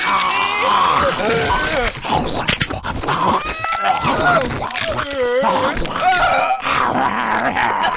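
Dogs growl and snarl loudly, a continuous stretch of rough guttural rumbles broken by higher whining, moaning cries that rise and fall in pitch.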